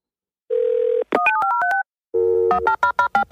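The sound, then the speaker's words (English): A steady telephone dial tone hums briefly, then a quick run of touch-tone keypad beeps, followed by another dial tone and more dialing tones, all clear with no voices. “Don't hang up that phone.”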